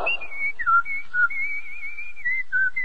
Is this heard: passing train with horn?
no